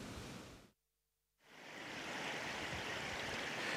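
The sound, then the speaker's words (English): Steady rushing water pours through the millrace at Barashul, a channel connecting Loch Fia and Loch Furness, a dense hiss that cuts out for about half a second, then swells back in and runs on strongly. No voices. “Now we're here at the Millrace at Barashul. The sound of running water here brings me back to the Shannon at Limerick, where I grew up in the 60s and 70s.”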